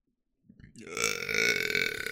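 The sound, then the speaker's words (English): A single long, loud burp rumbles up after a brief pause, building quickly and holding a raspy, buzzing tone for over a second. “Sorry, that just came out.”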